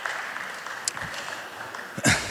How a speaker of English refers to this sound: That was all right. I think we can do better. Yeah, clap a little bit louder. There we go.